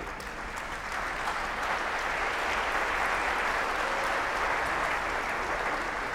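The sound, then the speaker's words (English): A crowd applauds steadily for about six seconds, many hands clapping in a dense, even wash of sound with no speech over it. “It's hard to hear them clap for him, I'll admit.”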